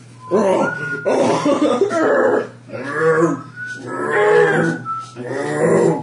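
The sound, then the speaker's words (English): A human voice imitates the singing of mating toad seals: a series of warbling, croaking, grunting bursts with throaty harmonics, loud, repeated in several long phrases with brief pauses between. “The sounds of singing, mating toad seals.”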